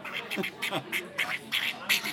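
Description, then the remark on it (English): A voice imitates a duck with a rapid series of nasal, raspy quacks, about six or seven short bursts in an uneven rhythm, fairly loud. “He's tried to describe it to you, but you don't speak duck.”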